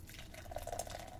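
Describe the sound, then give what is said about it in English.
Haze Craze beer, 6.5% alcohol by volume, pours into a glass in a short, steady stream, with faint bubbly gurgles near the middle. Fairly quiet, with no voices. “And the pour.”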